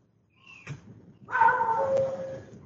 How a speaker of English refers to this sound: And a dog. Yeah, the dog is me.